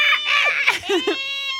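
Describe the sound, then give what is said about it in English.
A person imitates a Shiba Inu's scream: a shrill, wavering, high-pitched yowl that bends up and down for under two seconds, loud, with no talking. “Anyway, but I couldn't get the scream down. The scream is so hard for Shibas.”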